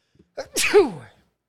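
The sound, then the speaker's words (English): A single loud sneeze with a quick sharp inhale leading into an explosive burst, ending abruptly. No one speaks. “Thank you to all the people that just said bless you.”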